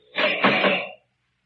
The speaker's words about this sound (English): Oh, guard! Open the cell door.